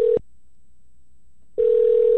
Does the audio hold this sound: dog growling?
no